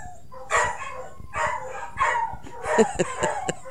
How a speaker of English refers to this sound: Oh, my gosh. My dogs are having a crazy fit in there. Y'all hear them? It's probably the mailman.